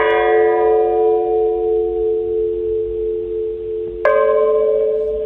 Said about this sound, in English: Well, what the hell is that? Well, I don't know. It's a ghostly bell.